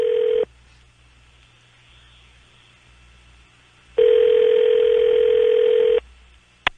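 A telephone line tone plays close and clear: a short steady burst, a few seconds of quiet, then a two-second steady tone, with a faint click at the end. No one speaks.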